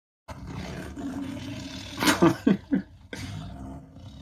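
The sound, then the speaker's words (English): A creature growls nastily in a low, rumbling roar, rising into several harsh, snarling bursts in the middle before settling back into a sustained growl. “It's growling in a very nasty way.”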